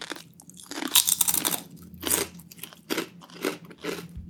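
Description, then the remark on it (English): Crisp crunching of sea salt and vinegar potato chips being chewed, a series of loud, brittle bites and crackles repeating irregularly over a few seconds with no talking. “Oh, that's a nice crunch.”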